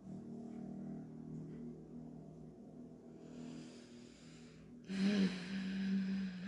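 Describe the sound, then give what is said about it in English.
A low, rumbling engine drone holds steady, then swells into a louder, harsher roar near the end, like a loud car or motorcycle passing. No one speaks. “Motorcycles or like loud car engines. I don't know what that was”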